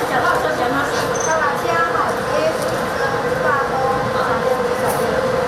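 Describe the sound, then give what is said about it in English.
A train in Yilan rolls steadily along the rails with a continuous loud rumble and rattle, with faint indistinct voices murmuring underneath. “But if you fancy a less taxing itinerary, why not take the train and hop off at one of Yilan's many beautiful coastal stations, where you can hire a bike to explore.”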